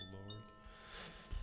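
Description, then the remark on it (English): Sustained, ringing chime tones hang together in a dark, eerie musical wash, steady and moderately loud, with a brief low rumble near the end. “It's like chimes, but it's like evil chimes.”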